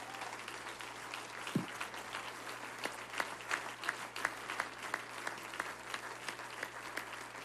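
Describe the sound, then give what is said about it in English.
An audience gives award recipients another round of applause, a dense wash of many hands clapping at once, with sharper individual claps popping out over the sustained roar for several seconds. “Now, would you give all of these recipients another round of applause?”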